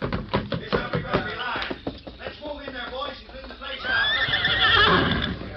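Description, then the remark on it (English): After a few seconds of rapid clattering and thumping, a horse lets out a loud, shrill, quavering whinny that trails off at the end. “Keep low till we get through the back door, then run for the horses.”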